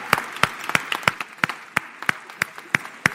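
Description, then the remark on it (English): Audience applause for the men who have stood up in the room, with a steady, rhythmic beat: about ten sharp, evenly spaced claps over a soft wash of crowd noise, moderately loud, with no speech. “Come on, let's give these guys a round of applause.”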